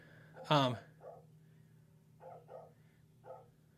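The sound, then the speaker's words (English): A dog gives one loud, sharp bark, followed by several softer, shorter yips and woofs at irregular intervals, against a low steady hum. “My dog is freaking out.”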